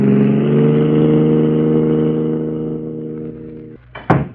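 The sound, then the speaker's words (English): A car engine runs with a steady, droning rev, then gradually eases off and fades as it pulls away, ending with a brief sharp knock. No one speaks. “We gotta ditch this car and get away from here.”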